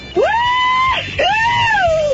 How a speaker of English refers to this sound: Scream again!